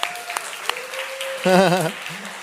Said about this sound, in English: Pastor Brian poured his heart out last week, and you guys give him a golf clap?